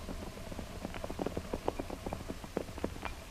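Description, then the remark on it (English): Hooves clip-clop steadily on hard ground, a busy overlapping rhythm of many hoofbeats as several horses walk along on their way to be watered, with no voices. “We want but to water horses, Saab.”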